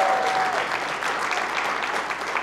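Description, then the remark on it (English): An audience claps together in a dense, steady burst of applause that stays fairly loud and even throughout, with no voices rising above the clapping. “You don't need to clap.”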